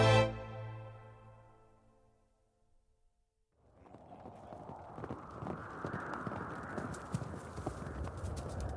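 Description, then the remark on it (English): After a fading tone and a moment of silence, a herd of horses gallops in, their hooves clip-clopping in a dense, rumbling rush that grows louder and stays steady. “the rest of the horses catch up with Bartholomew and quickly overtake him”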